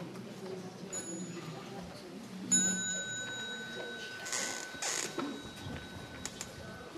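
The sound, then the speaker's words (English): A small bell gives a light tap, then a clear strike that rings out and slowly fades over several seconds, rung at a Sangha gathering as the signal for the children to stand up and go out to play, with quiet murmuring voices and shuffling beneath. “So when you hear the bell, small bell, you may stand up and salute the Sangha and go out and play.”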